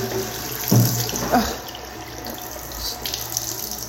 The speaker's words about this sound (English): So I'm getting water, and this has been the whole journey of the podcast, but it's okay.